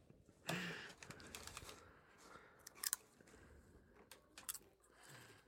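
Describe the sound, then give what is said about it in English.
Quiet crunching and chewing of popcorn as more than one person eats it, with irregular crisp bursts and a few sharper crackles scattered over several seconds, no voices. “And I'm sorry if you hear popcorn noises.”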